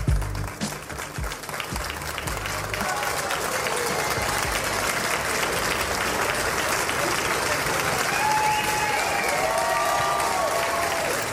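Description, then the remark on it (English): Sustained real applause from a large crowd on the United States House of Representatives floor in August 2011, when Congresswoman Gabby Giffords returned to the House to vote; dense steady clapping that swells slightly toward the end, with faint voices and cheers mixed in. “The applause you hear in the background is not a sound effect.”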